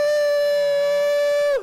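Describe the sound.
A group of people, howling together on a count of three for Howl for Change, imitate a wolf howl, holding one steady, siren-like tone for about a second and a half before it drops and breaks off at the end.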